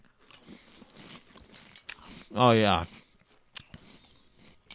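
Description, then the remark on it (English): Crunchy chewing of Reese's Puffs peanut butter puffed cereal, with irregular bursts of crackling bites throughout and a brief loud spoken exclamation near the middle. “God, I love peanut butter cereals. Yeah, these are pretty good.”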